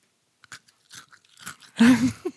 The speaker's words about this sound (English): if you crunch a pocky into the microphone.